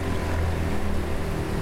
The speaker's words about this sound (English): Well, I guess not really a thunderstorm. There's no thunder. But just a quick little patch of rain. So a little hard rain for a short time. Summer afternoon. Osaka, Japan. I'm standing outside of the coffee shop right now